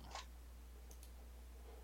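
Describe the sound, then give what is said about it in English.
Dice clatter briefly on a tabletop during a D&D game for an investigation check, landing on 18: a quick rattling click at the start, then a couple of faint, sharp taps a moment later, all quiet with no talking. “Dice rolling in my D&D?”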